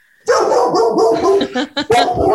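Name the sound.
dog barking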